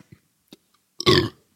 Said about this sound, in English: Ugh. That was a bad. Oh my God, that smells so bad. Yo, you be burping.